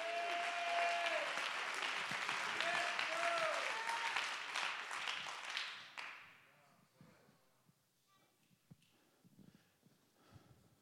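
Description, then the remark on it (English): A church audience claps hands in a dense, loud burst of applause with a few voices calling out over it, lasting several seconds before abruptly dropping to scattered faint sounds. “Clap your hands and lift your voice in the only name under heaven whereby we must be saved.”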